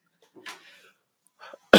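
A couple of soft, throaty exhalations give way to one loud cough that bursts out at the very end and gets cut off. No talking.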